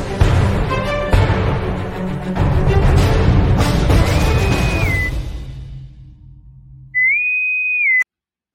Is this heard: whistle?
yes